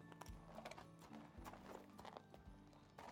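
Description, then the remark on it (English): Horses drawing a van clip-clop on a hard road in a brisk, steady rhythm, clear, with a faint low rumble underneath and no talking. “The men who had taken Tinkle away made the horses drawing the van hurry along, so they were soon out of the city where the Farleys lived.”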